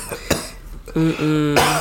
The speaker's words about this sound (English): We're going to be coughing for the rest of the show. Yeah, so if y'all be like, why do you keep coughing? Y'all know why. Mm-mm. This fucking Mountain Dew.